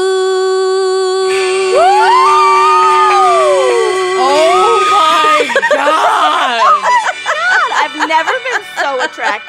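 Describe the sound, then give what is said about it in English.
A person screams, a long loud wail that swoops up and down in pitch, then breaks into choppy, breathless bursts that sound close to laughter. “My screaming never scared my dog, who is trying to get out of this room, and that was exquisite.”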